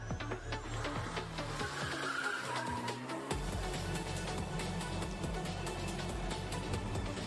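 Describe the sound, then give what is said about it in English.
Small cars in a racing video game roar continuously while tires squeal and skid in drifting slides, with engine revs rising and falling in a dense, loud mix, no voices. “I feel that way about tiny cars. Like. When they drift, hot rods. I love drifting.”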